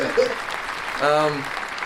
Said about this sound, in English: So a couple days ago, we celebrated my 28th. Woo! He's applauding himself, baby.